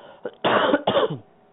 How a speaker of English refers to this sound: And I have to beg your forgiveness because I do have a cold. So on occasion, I think I'm probably going to cough, but not a whole lot I can do about it.